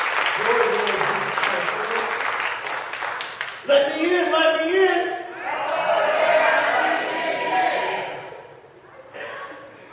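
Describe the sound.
A church audience breaks into a round of applause, loud dense clapping with scattered cheers and voices, swelling in waves for several seconds before tapering off near the end.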